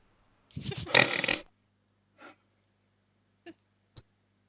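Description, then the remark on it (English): A loud, rough nose blow into toilet paper from a stuffy nose, lasting about a second, followed by a softer sniffling puff and two brief sharp clicks or snorts, with no talking. “All right, roll a toilet paper, blow my nose, and my nose stuffy.”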